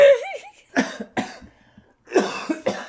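A fit of harsh coughing: two sharp coughs, a brief pause, then a rougher, longer cough followed by one more, preceded by a short wavering vocal sound.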